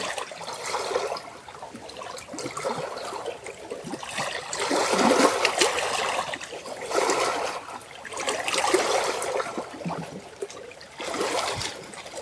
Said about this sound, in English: Listen to the water.